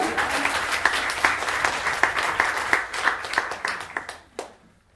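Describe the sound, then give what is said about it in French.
A crowd applauds steadily to thank the man who invited the panel, a dense wash of many hands clapping with a few sharper individual claps standing out, thinning into scattered claps before fading to near silence at the end. “Je pense qu'on peut l'applaudir lui aussi.”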